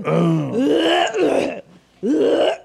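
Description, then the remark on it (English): A pregnant person clears their throat loudly and phlegmily, a rough, groaning rasp lasting about a second and a half, then a short pause before a second gravelly rasp starts up. “It's just, it's phlegmy. Okay. It's a pregnancy thing.”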